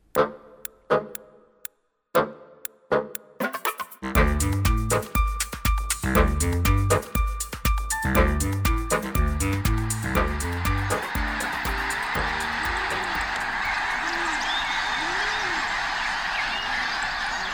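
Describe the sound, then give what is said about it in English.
A flock of migrating birds calls in a dense, overlapping chorus of honking cries, loud, then gives way to a steady rushing wash with scattered calls. “The sound of winged dinosaurs during migration.”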